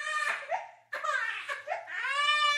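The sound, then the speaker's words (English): A baby cries loudly, with three drawn-out wailing bursts separated by quick gasping breaths, rising and falling in pitch, and no one talking. “But if you were teaching a computer to tell those sounds apart, how would you go about telling it what makes something very clearly a dog barking and what makes something else a baby crying.”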